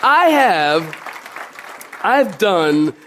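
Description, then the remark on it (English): An audience claps at a preacher's request during a sermon on the hope of heaven, in a brief, scattered burst of noisy applause, framed by a loud voice calling out in long, sustained tones before and after. “I want you to clap your hands right there.”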